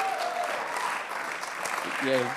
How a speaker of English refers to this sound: Come on, let's give him a hand as he comes. Come on, keep clapping. He's still not here yet.